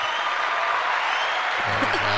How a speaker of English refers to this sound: Applauding himself. We love to see it, man. The classic.